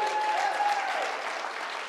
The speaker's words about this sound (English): If you're saved and you know it, clap your hands.